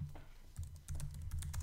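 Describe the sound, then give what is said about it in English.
Rapid, irregular clicks of fingers typing on a computer keyboard as someone searches on Google, fairly quiet, over a low steady hum, with no voices. “This way you don't have to put in the sound of a keyboard.”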